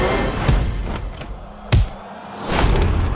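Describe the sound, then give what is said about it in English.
A heavy door thuds shut with a sharp impact, followed by fainter clunks and rattles as someone locks it, over a dense background rumble. “Someone's locked the door.”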